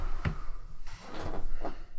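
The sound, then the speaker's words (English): A chair squeaks and creaks a few times, with short, uneven groans mixed with soft knocks and shuffling, and no one speaking. “Got a squeaky chair.”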